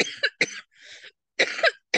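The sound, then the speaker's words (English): A person coughs several times in close succession: a quick pair of harsh bursts, a raspy breathy hack, then another double cough and a short final one, fairly loud with no talking. “I hate coughs.”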